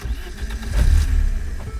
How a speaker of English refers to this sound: So what does a certified car guy listen to while he drives? I can be entertained by the sound of the motor.